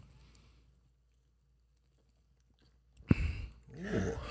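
After a quiet stretch, someone takes a sip of light beer from a can: a sharp tap, then a short slurp and a gulping swallow, with no talking.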